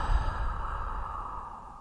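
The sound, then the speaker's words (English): A long, steady cleansing breath exhaled through the mouth, a soft airy rush that starts strongest and slowly tapers over about two seconds, alone with no talking. “Draw in a full breath, extending your belly, and release all of your worries and stress through the mouth.”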